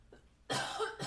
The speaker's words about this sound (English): That was a cough. That was a cough. It's disgusting. It was COVID.